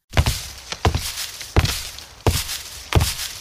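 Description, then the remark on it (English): Heavy, thudding footsteps of a fur-covered creature charging toward the listener, five loud booming steps at a steady, deliberate pace, each with a deep low impact and a short rumble trailing off. No voices. “The creature turns and charges in your direction.”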